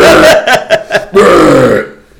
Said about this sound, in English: God dang it. I'm sorry. Sorry, guys. I got the hiccups.